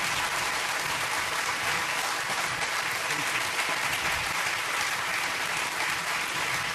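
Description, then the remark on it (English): Loud, steady applause from a large audience honoring men for their service, a dense wash of many hands clapping at once with no pauses or voices breaking through. “One more time, round of applause.”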